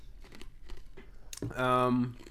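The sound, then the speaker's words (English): Crunchy chewing of ice, several quick crackling bites in a row, followed by a short voiced murmur at the end. “Let me just chew this ice real quick.”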